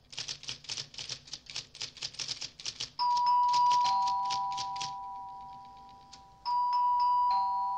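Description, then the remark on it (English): After a few seconds of quick, steady clacking, a doorbell at a house chimes late at night, a bright two-note ding-dong that rings out and fades, then sounds again near the end. No one speaks. “She's just reading a magazine or whatever, and then the doorbell rings.”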